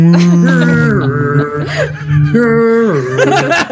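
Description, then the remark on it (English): A voice imitates a foghorn with long, loud, low droning blasts, each held for about a second and sliding downward in pitch, repeated several times with brief breaks and no speech. “Making the sound of a foghorn.”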